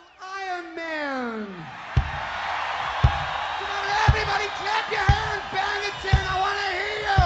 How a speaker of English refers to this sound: Everybody's shouting yeah all at the same time. Come on, I'll count to three. I want to hear you shout yeah.